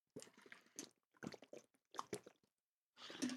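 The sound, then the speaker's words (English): Someone sipping a drink: a few short, wet slurping and swallowing sounds in quick bursts, ending with a slightly louder gulp. No one speaks. “I had to take a little bit of a beverage there.”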